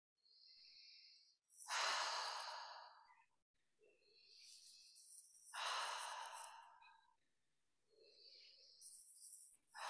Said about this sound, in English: So we're starting slowly. We're going to come in through the nose, out through the mouth.